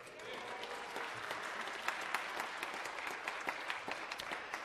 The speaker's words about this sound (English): I've never been able to get you to clap for my sermon. At least you'll clap in it. So thank you for that. I appreciate that.